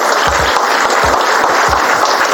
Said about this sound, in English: So I want to give her a big round of applause.